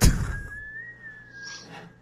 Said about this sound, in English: Whistling? I think. Is that him whistling?